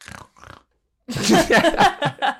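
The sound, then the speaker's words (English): A voice imitates Jim Carrey's Grinch with a gruff, raspy snarl: two short throaty grunts, a brief pause, then a loud, choppy, pig-like growl that pulses for over a second. “Is that a snarl or a pig? Well, that... Okay. That was supposed to be Jim Carrey's Grinch.”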